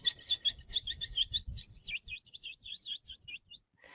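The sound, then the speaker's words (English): A person imitates bird chirping with a quick, continuous run of high, warbling whistles over about four seconds, moderately loud, with a low rumble underneath. “And plus, I'm always trying to make bird sounds, you know.”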